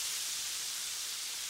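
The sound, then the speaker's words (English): A steady, dense sizzling hiss from a hot wok fills the short stretch evenly from start to finish, with no voices over it. “does anyone mind if I stick my head in the wok and sizzle my face?”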